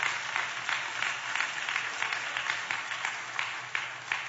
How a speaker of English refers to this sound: Come on, give the Lord a hand clap if you learned something today.